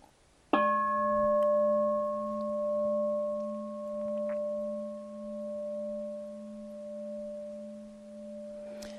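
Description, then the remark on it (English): A single bell is struck once, its clear tone ringing with several steady overtones and a low hum that sustain and slowly waver, fading only slightly over many seconds. “Pretty clear tone that reverberates, yeah, that moves the air.”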